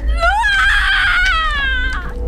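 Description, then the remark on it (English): A loud, sustained high-pitched wail that rises sharply, holds a piercing harmonic tone for over a second, then slowly sags in pitch, with a low rumble underneath throughout. “My mom closed her eyes, quietly humming again, broken only by that ear-shattering wail.”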